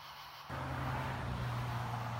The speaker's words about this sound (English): There's cars.